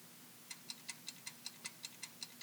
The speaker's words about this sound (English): Why did I just start hearing the clock? Now, that's your time. That's our timer. God, I knew that. Anyone else hear that clock?